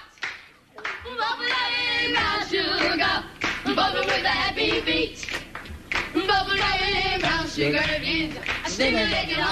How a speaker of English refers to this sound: Where are you on? You're clapping on the one and threes. Yeah, I know.